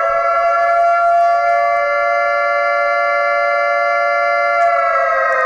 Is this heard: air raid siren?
yes